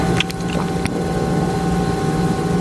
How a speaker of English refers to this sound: So I'm gonna boost the sound of the fridge right now so that you can hear it. It just turned on.